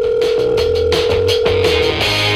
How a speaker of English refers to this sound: She pulls out her phone, dials Zeke's number, calls him.